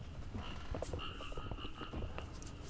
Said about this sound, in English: This is definitely going to be to the detriment of the sound quality of this episode, that I'm battling against a bunch of fucking frogs.